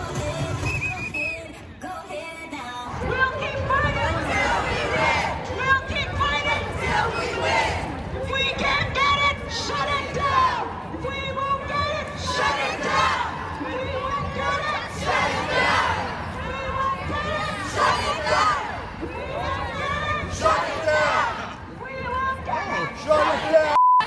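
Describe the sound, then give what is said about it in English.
A large parade crowd chants and shouts in unison, loud and sustained, with rhythmic bursts of voices rising and falling over a constant roar of many people. “Let's wade into this parade and see what those in the sisterhood have to say.”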